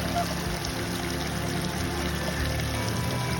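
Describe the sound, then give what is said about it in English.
A flowing mountain brook rushes and gurgles steadily throughout, a dense, continuous wash of water noise that is fairly loud, with no pauses or breaks, as walkers cross over it. “And then we cross over the most picturesque mountain brook.”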